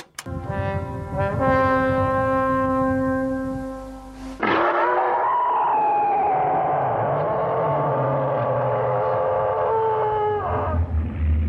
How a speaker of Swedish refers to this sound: Och om de här vakterna ser något misstänkt, då blåser de för full hals i sina signalhorn. Bara, brum, ungefär som en...